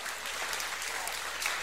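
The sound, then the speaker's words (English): An audience claps hands together in sustained, dense applause in praise of God, steady and fairly loud throughout, with no distinct voices standing out. “Give the Lord a great hand clap of praise.”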